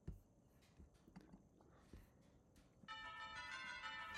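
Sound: church bells ringing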